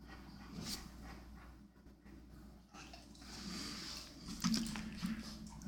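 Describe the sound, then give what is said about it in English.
A dog breathes softly and steadily, with faint huffing breaths and small wet mouth sounds over a low hum, no voices. “I was hoping, I am just hearing my dog breathing, hoping it's not picking it up.”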